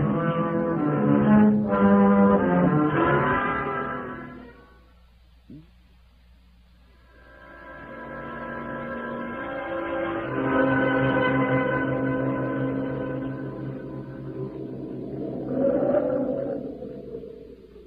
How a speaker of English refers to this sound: Storm coming up. That wind's from the east.